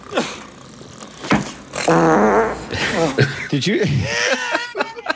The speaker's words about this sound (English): I loved it. Because the closed caption just said farting.